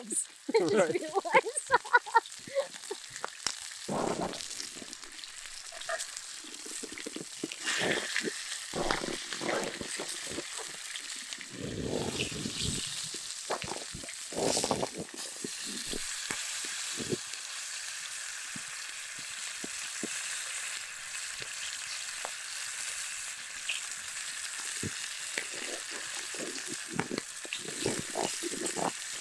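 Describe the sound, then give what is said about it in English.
Food sizzles steadily in a cast iron pan over a campfire outdoors, a continuous bright crackling hiss broken now and then by short low thumps and scrapes, with some faint voice underneath. “And I have this campfire here.”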